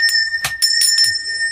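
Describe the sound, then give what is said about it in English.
A small hand bell is shaken briskly to summon a servant, several bright metallic rings in quick succession with a steady sustained tone ringing underneath, fairly loud, with no one speaking. “I just can't get the perfect bell ring. I think that was perfect.”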